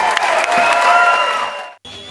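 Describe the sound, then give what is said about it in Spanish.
A crowd claps steadily for about two seconds, a dense, lively burst of applause that cuts off abruptly near the end, with a faint sustained tone lingering behind it. “¡Chévere! aplauso, mi gente.”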